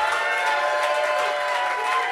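A crowd applauds and cheers for a performer at the end of an evening show, in a steady, dense wash of clapping mixed with voices, holding at an even, fairly loud level throughout the short stretch.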